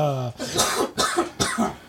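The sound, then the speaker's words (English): A short voiced sound is followed by three harsh, breathy coughs in quick succession, fairly loud, each a sharp burst with a rough tail. “That made me cough.”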